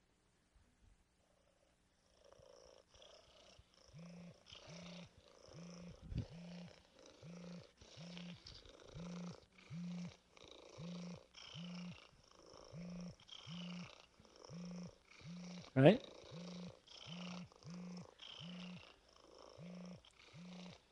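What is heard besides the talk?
domestic cat purring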